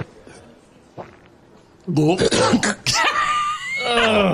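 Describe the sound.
After a quiet moment, a person imitates a cat coughing up a fur ball: a burst of loud, harsh hacking coughs, then drawn-out, strained gagging and retching sounds, prominent.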